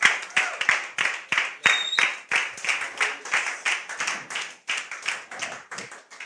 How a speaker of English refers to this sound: Now you can clap for Jesus.